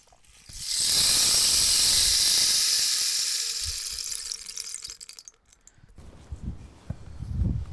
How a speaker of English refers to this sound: Just found a rain stick yesterday.